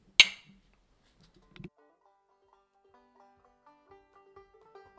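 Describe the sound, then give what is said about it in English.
Glasses clink together in a toast: one bright clink rings out at the start, then a softer second clink follows, with faint tonal notes lingering quietly afterward. “Cheers.”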